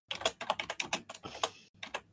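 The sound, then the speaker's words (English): Rapid, uneven clacking of keys on a computer keyboard as someone types a link into notes, fairly quiet, with a brief pause before a few more keystrokes; no one speaks. “Typing it, putting it in now.”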